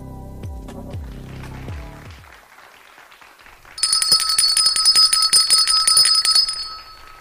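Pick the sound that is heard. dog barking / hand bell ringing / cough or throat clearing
hand bell ringing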